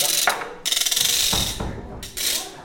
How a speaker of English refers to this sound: Ratchet.